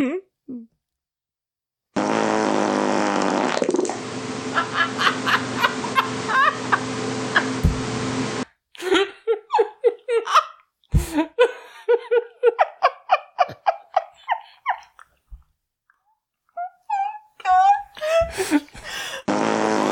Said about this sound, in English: I have not yet recorded a secret fart. But listen, this one's just called The Best Fart. Are you ready?